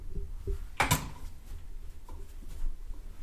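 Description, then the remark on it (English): A water glass gets knocked over with one sharp clatter, preceded by a couple of faint taps and followed by quiet room tone. “I just knocked over my water right then when I said that.”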